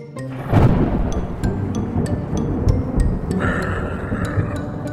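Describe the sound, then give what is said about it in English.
A loud crack of thunder from a storm surging over a laboratory bursts in near the start and rolls into a long, heavy rumble, with a steady high electrical whine and sharp intermittent ticks over it. “A monster of indomitable strength, fueled by the arcane storm surging over the lab at this very moment. Now, all I need is one lucky lightning strike.”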